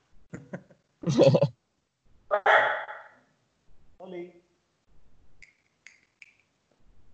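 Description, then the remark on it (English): A Foxter dog barks twice, two short loud bursts about a second apart, followed by softer yelps and faint high squeaks, with quiet pauses between. “What kind of dog is it?”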